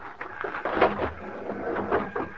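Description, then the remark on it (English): Heavy fists pounding on the wooden door of a railway baggage car at a depot, a series of irregular thuds and knocks repeating over a couple of seconds, fairly loud with a hollow, woody resonance. “As soon as the crowd left the depot, we walked down to the car, crawled under it, and pounded on the door on the other side.”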